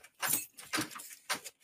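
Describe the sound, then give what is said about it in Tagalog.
Three quick bursts of bright metallic jingling from a set of keys being shaken or handled, with short pauses between them and no talking. “Buti na lang nadala ko yung susi.”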